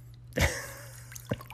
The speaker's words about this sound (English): You're twinkling your toes there in the water, twinkle toes.